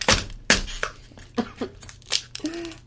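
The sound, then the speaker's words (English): A voice makes a series of short, harsh, breathy bursts, imitating the sound of something ripping. The bursts come in an uneven rhythm, fairly loud, with a low hum underneath. “Gotta rip!”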